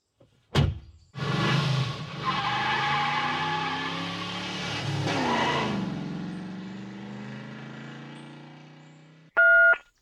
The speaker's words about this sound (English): Wow. That sounds like someone stopped at the side of the road. And got out of the car.